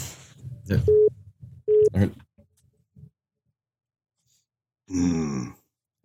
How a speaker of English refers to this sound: Got a little beeping going on there.